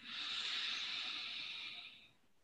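A slow, steady inhale drawn in through the nose, a soft airy hiss lasting about two seconds before tapering off, quiet with no talking.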